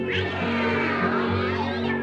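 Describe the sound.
A voice imitates a cat's meow with one long, drawn-out, whining call that rises and falls in pitch, fairly loud, lasting about two seconds with no other sounds.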